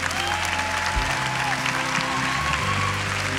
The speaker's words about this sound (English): So church, one more time, y'all give them a big hug through your clap.